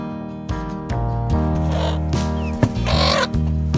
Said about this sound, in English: That's the slightly disgruntled chicken noise.